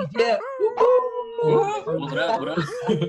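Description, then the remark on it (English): Several members of an online community, unmuting their microphones, imitate wolf howls and let out whoops together, overlapping sustained rising and falling voices, loud, with short breaks between bursts. “So fellow leading members, please feel free to say hello by gently unmuting your microphones and making some noise and just making some like whoops and some wolf howls.”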